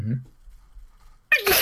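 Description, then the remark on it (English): A single loud human sneeze bursts out near the end after a short quiet pause, preceded by a brief murmur of voice at the start. “Gesundheit. Gesundheit indeed.”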